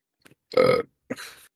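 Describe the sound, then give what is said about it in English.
A loud burp with a deep rumbling body from a person drinking a canned watermelon sour beer, followed by a shorter, breathier second burp after a brief pause, with no talking. “Started making me burp”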